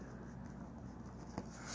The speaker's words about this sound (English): so he's just writing on a piece of paper to make sure we have everyone.